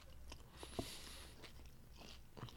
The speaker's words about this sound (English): All right, don't listen because I'm over here chewing like a fuckhead, but...